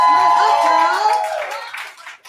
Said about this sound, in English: You made our top five. Guys, let's get another round of applause for the top five.